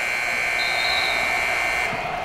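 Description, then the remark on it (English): A loud, sustained final buzzer blares steadily for about two seconds in a basketball arena, ending an NBA game the Heat won 112-93. It is a harsh continuous electronic tone over a low rumble of background noise. “When the final buzzer goes, the Heat have won 112-93, and Mourning has scored an incredible 50 points.”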